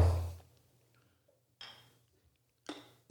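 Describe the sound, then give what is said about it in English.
A dull, hollow thud of a plastic bottle being set down, followed by two quieter knocks and rattles as it is handled. No one speaks. “That was a thud. So I got a plastic bottle.”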